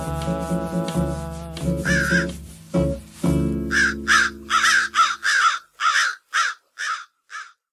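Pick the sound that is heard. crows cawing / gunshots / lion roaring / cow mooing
crows cawing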